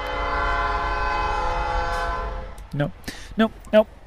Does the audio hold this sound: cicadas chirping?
no